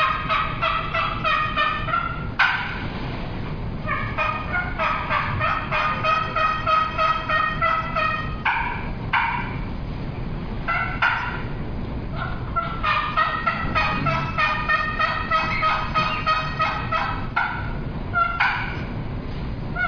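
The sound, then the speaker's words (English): A trumpet turkey call imitates hen yelps in loud, rhythmic runs of raspy notes, separated by brief pauses across the whole stretch, with no one talking. “But I like the trumpet because it's different. It's got a little bit different sound, and sometimes they'll respond to it.”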